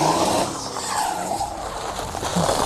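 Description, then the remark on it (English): A powered wheelchair revs hard as its tires screech, a loud, continuous squeal over a rough motor roar lasting a few seconds, with no one speaking. “You mean on your wheelchair? I just thought that you could use a lift.”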